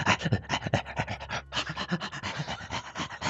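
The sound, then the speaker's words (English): A dog, Bacon, pants rapidly and steadily, quick breathy huffs repeating in a fast rhythm with a brief pause partway through, and no talking. “Come on, Bacon. You can ride Bacon. And, other dog thing.”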